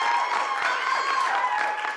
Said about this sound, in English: Well, Anne, that's quite a story. I think everyone should join me in giving Anne a round of applause.